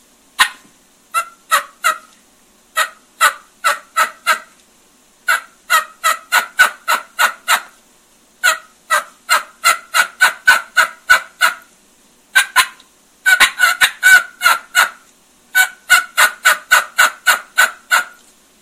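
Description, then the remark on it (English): Loud turkey hen yelps imitated on a diaphragm mouth call, plain yelps starting under-the-breath, delivered in quick rhythmic runs of sharp, raspy notes with brief pauses between series, growing more excited, with no talking. “I'm pitching that hen.”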